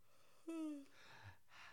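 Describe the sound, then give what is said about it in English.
A single yawn: a brief voiced, falling groan that trails off into soft, breathy exhales, with no other sounds around it. “And I'm going to yawn.”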